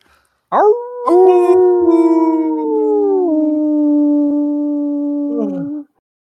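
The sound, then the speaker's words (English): A dog lets out one long, loud howl, swooping up sharply at the start, holding a steady wavering note for several seconds, then dropping off at the end. “Woof.”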